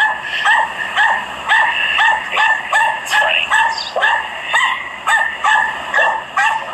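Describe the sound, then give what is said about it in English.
A small dog barks over and over in a quick, steady rhythm, sharp high-pitched yips coming roughly twice a second, loud, with no other voices. “So he doesn't understand that the dog is sitting there being annoying, going, arf, arf, arf, arf, arf, arf, arf.”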